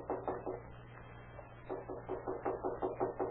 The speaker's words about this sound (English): Then at the home of Aligo Ortega, a feeble knock is heard at the door.